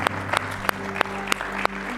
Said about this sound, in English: Come on and give Him a hand clap of praise together tonight.